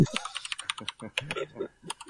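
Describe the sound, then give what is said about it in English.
Rapid typing on a computer keyboard picked up by a microphone placed next to the keyboard, a dense stream of sharp clicking keystrokes in an irregular rhythm, loud, with no talking over it. “And then put my microphone next to my keyboard.”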